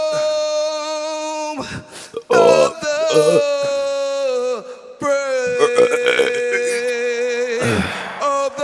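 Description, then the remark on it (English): Someone belches a tune, the US national anthem, holding long pitched burp notes that rise and fall like a melody, with sharp gasping breaths between phrases. “I tried to burp it out.”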